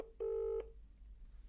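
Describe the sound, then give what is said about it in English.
A single telephone keypad tone sounds clearly for under half a second as a phone call is dialed, a steady electronic beep standing alone over a faint low background hum, with no one speaking. “I want to get Craig Richards on the phone because dial him”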